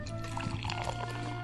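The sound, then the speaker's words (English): Beer from a can pours quietly into a glass, a soft, steady liquid trickle with faint fizzing, continuous with no talking. “You have the silent pour on your end.”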